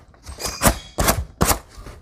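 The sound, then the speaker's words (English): Rhythmic scratchy rasps of an old sanding block, used for many years, rubbed back and forth, about four or five firm strokes, each a broad hissing scrape, with brief quiet gaps between and no talking. “Okay, sanding.”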